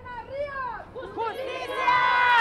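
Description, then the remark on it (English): A protest march crowd of many raised voices shouting together, calling out "Justicia" as protest leaders speak the names of women into a bullhorn, the chorus of overlapping calls swelling louder and higher in pitch toward the end. “what an emotional moment it was, especially at the beginning of the march where some of the leaders of the protest, they were speaking the names of some of the women whose stories I've come to know very intimately into a bullhorn, into the crowd.”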